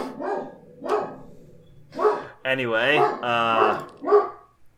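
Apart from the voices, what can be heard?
dogs barking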